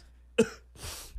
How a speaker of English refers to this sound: It just transitions really well right into the coughing, though.